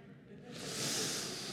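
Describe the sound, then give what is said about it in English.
A male cat that lived under the house hisses once, a sharp breathy rush of air that starts after a brief quiet moment and holds steady, fairly loud, with no talking. “He came with the house, or more appropriately, he came under the house, and he was the cat that was living there when we got there”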